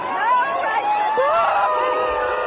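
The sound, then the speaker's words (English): A large concert crowd boos loudly and steadily, many voices merging into one sustained, wavering roar of disapproval that never lets up for the whole stretch, while many people walk out. “The crowd continued to boo, as you heard, and a lot of people walked out.”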